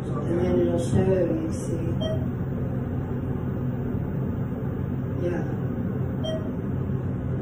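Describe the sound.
An elevator gives two short, mid-pitched beeps about four seconds apart as it passes floors, over a steady low mechanical rumble, with murmured voices near the start.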